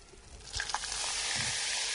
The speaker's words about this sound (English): Wow, as soon as you put the water in, the bicarb all fizzed up. It now looks like lemonade, actually. Is that the carbon dioxide coming out? Yeah, that's right.